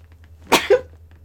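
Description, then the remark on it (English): A single sharp sneeze bursts out, followed by a brief voiced tail, over a steady low background hum. “Bless you.”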